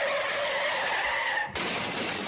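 A loud, sustained tire screech wails for about a second and a half, then cuts abruptly into a harsh crash with a spray of shattering glass. No voices are heard.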